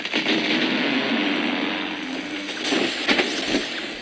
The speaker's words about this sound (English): That was one of the millions of trees cut down each day for the paper industry. The heavy buzzing of machinery, the creaking of trees as they fall to the forest floor